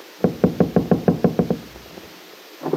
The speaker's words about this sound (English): A moment later, Peggy knocked at the door, which was opened by her friend James.